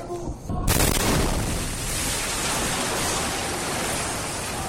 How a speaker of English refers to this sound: So that is what? That explosion is what? So what we're seeing in the video is a group of men on top of a rooftop.